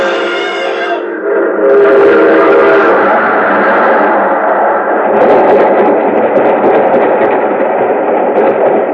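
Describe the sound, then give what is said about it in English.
A train's horn blows briefly, then a loud rumbling roar of rolling wheels and clatter fills the air as the train rushes past, steady and heavy to the end. “There's a train coming.”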